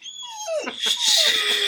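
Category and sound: animal, dog whining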